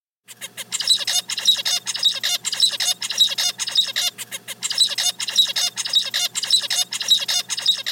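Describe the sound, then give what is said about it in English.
A zebra finch sings, a rapid string of buzzy, squeaky notes and sharp nasal chirps repeated in tight, regular phrases, loud and continuous with no talking. “Here's an example of a zebra finch singing.”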